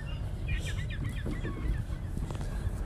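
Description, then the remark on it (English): A cluster of seagulls calling in quick, overlapping cries over a steady rumble of outdoor background noise; the calls fade toward the end. “the gulls know something's up.”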